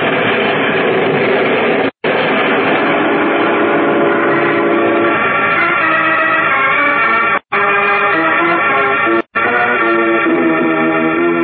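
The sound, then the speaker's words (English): A train in the Metropolis Railroad Station, loud and continuous, with a rumbling undertone and sustained horn-like tones. The sound cuts out abruptly three times. No one speaks. “he stands with Editor Perry White, Lois Lane, and Horatio Horn in the Metropolis Railroad Station”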